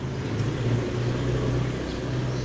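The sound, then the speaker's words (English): A steady, continuous engine drone with a low humming rumble holds at an even loudness throughout as four motorbikes drive past on a deserted street. No one speaks. “And now suddenly, there are four motorbikes go past.”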